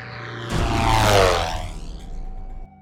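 A propeller plane's engine suddenly roars loud as it takes off, its pitch sweeping as it races past, then settling into a steady low rumble that cuts off abruptly.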